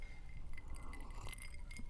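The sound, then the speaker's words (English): Glasses of bourbon clink together a few times in a quick toast, light and fairly quiet, with no one speaking over a low steady background hum. “Have a sip of bourbon. Thanks. Cheers.”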